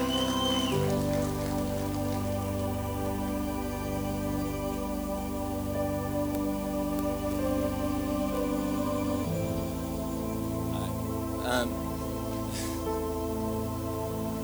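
Steady audience applause for a speaker at a service, a dense crackling wash of clapping that carries on for the whole stretch over a sustained tonal hum, with no voices.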